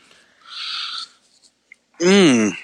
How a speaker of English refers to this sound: No, go ahead. I was yawning.